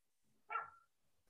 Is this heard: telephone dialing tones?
no